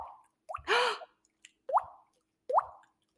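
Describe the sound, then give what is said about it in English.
A voice imitates water drips with the mouth: three hollow, rising plops spaced out, with a breathy rush after the first. Fairly loud, with no talking. “Can you do the drip? Like the whoop? Oh, yeah, I can do that too.”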